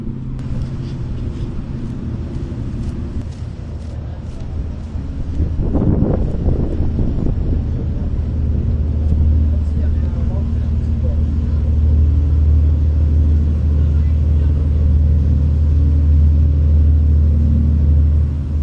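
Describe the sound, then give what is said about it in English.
A heavy diesel engine of a Paris Trocadero tour boat carrying school children rumbles low and steady as the boat passes, swelling in loudness partway through, with wind buffeting the microphone and faint voices in the background. “That diesel engine noise was the Vedette de Paris, the Paris Trocadero boat.”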